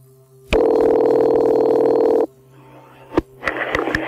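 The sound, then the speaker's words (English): A loud, steady buzzing telephone dial tone holds for nearly two seconds, then cuts off into a few sharp clicks and bursts of line static as a phone call to the police connects. No voices. “he phones into police asking to speak directly to the command post.”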